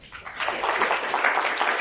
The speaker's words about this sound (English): Very good. Thank you. A big round of applause.